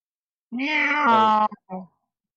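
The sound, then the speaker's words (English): A single drawn-out, fairly loud meow with a rising-then-falling whine, followed by a brief pause and a short, softer chirp-like mew. No one speaks over it. “Who the hell's meowing?”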